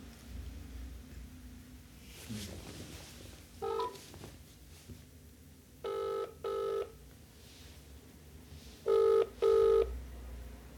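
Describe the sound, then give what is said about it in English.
A phone call rings out with a ringback tone: short double-pulse rings repeating every few seconds over a low background hum, with no one talking, as a man is rung to get him on the phone. “Get him on the phone real quick.”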